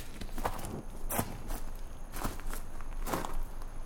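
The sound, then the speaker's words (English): Several crunchy, gritty footsteps at a steady walking pace surround the listener in the fading evening light, over a dense bed of background noise, moderately loud, with no one speaking. “As my cough subsided with the fading light of the evening, gritty footsteps surrounded me amid shadows that seemed miles high and blocked out the sun.”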